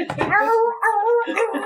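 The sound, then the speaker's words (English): A human voice imitates a weak, dying dog's whimper: drawn-out, wavering high whines in two or three quavering bursts, fairly loud, with a breathy rasp at the start. “Hey, it's still alive. Gurgle.”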